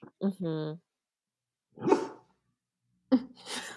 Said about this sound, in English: Is that your dog? Yes. He also loves plays. Yeah. No, I think there's somebody outside.